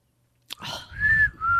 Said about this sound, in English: Something I still can't do, whistling.